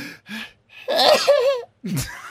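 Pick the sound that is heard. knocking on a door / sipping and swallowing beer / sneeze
sneeze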